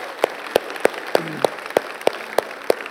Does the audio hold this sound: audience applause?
yes